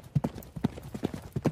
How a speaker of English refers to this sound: They buried the visitor, but the candles going out only proved to be the first strange event, because on the night succeeding the burial, the peace of Livingston was much disturbed by the apparent sound of horses galloping round his house.